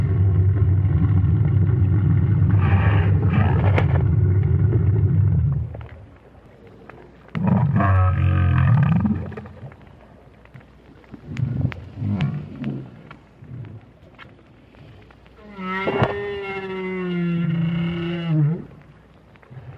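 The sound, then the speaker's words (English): Deep, drawn-out calls of a lone adult whale, recorded by a hydrophone on the sea bottom near Peninsula Valdez, Argentina, with low rumbling moans and groans broken by quieter gaps, ending in a rising, tonal cry that sweeps upward before fading. “Payne recorded the whale with a hydrophone he placed at the bottom of the sea near Peninsula Valdez in Argentina.”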